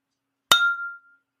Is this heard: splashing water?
no